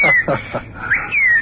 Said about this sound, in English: Uh-oh, look over there. Look, look. See? A cardinal. A cardinal. That's a baseball player bird. That's a St. Louis cardinal.